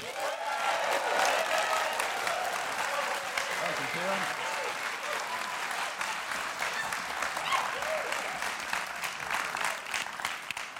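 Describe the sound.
A large audience claps loudly and steadily to welcome a storyteller to the stage, a dense, even wash of applause that holds its level for around ten seconds with a few scattered voices mixed in.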